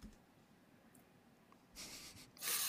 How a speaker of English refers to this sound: Sorry, you asked me right as I had like a cough.